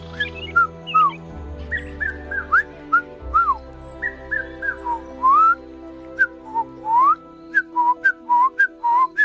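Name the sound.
human whistling imitating birdsong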